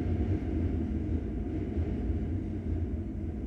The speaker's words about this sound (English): I don't know if you can hear the train. I'll be quiet here for a second.